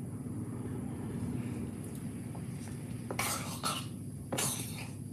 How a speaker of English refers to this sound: It's warm water, which I understand some people drink. And if I have specified anything, it's that any beverage is allowed. Any beverage. And so let's do the simultaneous sip, and I guess I'll drink warm water.